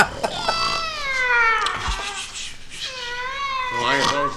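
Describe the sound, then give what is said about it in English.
A cat meows loudly, giving a long, drawn-out wail followed by two shorter meows with falling pitch. “Everything we try to do to sound creepy just won't happen. Stupid cats.”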